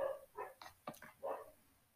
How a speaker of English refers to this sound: FYI, my dog's barking. So. If you hear stuff in the background, is my dog barking.